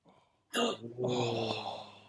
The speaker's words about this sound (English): You did it. You got a gasp.